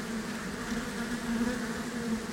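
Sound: bees buzzing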